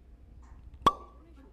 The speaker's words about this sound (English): Anyways, we're going to open the bottle. Yeah. And I'm going to see if, like, this microphone will capture that sound.